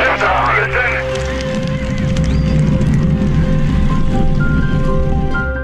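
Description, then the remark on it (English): The engines of the Apollo 11 rocket roar at liftoff after the main engine start and countdown, a loud, continuous, deep rumble that holds steady for several seconds, with a thin broadcast-like hum and faint muffled voices beneath it. “We have a go for main engine start. We have main engine start.”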